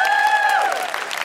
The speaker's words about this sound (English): Big round of applause for Catherine and Sophia.